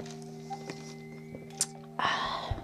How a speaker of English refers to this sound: I'm gonna take a sip of my much needed coffee.